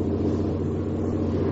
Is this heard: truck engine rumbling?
yes